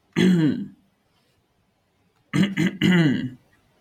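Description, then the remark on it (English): A voiced cough or throat-clear, made to draw attention, sounds once, then after a pause comes a quick cluster of three more, rough and deliberate, with no talking around them. “Everyone looks as Lily coughs.”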